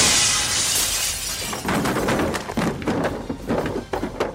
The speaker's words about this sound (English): It goes crashing into the wall, tumbling over itself, and you crash through the window.